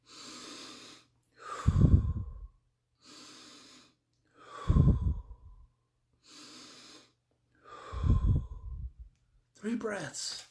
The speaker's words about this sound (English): and it starts out with the BP, and if you turn your sound up, if you listen, it goes like this. That's because I'm breathing.